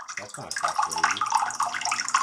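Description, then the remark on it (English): Water pours and splashes steadily in a flooded basement on a 62-degree December day, a continuous rushing hiss with a sump pump and a dehumidifier running, while a voice briefly murmurs near the start. “You can hear like the dehue and the fucking other pump, sump pump running in the background.”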